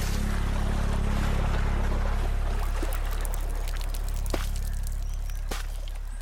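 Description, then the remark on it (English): Steady rushing, splashing river water as a man jumps into the river and drags a floating body ashore, with a low droning hum underneath and a couple of brief, sharper splashes near the end. No voices. “Immediately, he throws off his shawl, jumps into the water, and drags the body ashore.”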